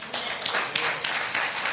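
An audience claps together in a dense, steady burst of applause, many hands overlapping into a loud, sustained crackling roar that holds without pause throughout.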